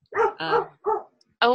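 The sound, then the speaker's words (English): A small dog barks four times in quick, uneven succession, each yap short, sharp and fairly loud. “There's also a small dog.”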